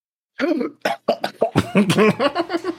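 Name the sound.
coughing fit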